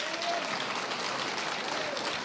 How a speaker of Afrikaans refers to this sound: Baie dankie, gee die man een hande klap, man.